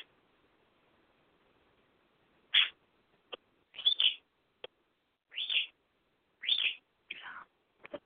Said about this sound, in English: Birds are screaming. I don't know why. He's covered up. There's no reason he should be screeching. Maybe that's why he's screeching. He's screaming because he wants out.